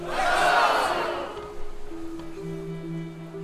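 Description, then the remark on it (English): A group of about a dozen voices lets out a loud, rousing shout of "huzzah" like a battle cry, swelling briefly and then fading into a lingering murmur and steady tonal hum. “Upon hearing that huzzah, several of the rats instinctively scatter.”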